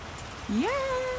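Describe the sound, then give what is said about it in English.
Steady pouring rain hisses throughout on a 36-degree day, and halfway through a single brief rising squeal, almost like a meow, cuts in over the downpour. “But also it's 36 degrees outside and now it's pouring down rain.”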